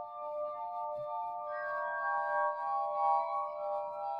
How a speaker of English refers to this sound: Yeah. So this is what a glass harmonica sounds like.